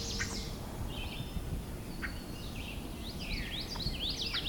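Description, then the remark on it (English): A winter wren sings in the distance, its high, rapid tumbling trills coming in faint bursts over a steady low background rumble. “In the distance, I can hear winter wren singing.”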